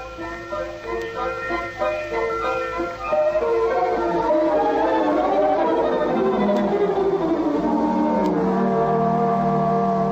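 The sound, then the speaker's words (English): Bells ring out in a chiming, melodic tune, with sustained overlapping tones that swell louder after the first few seconds and keep ringing steadily. No one speaks. “what are those bells?”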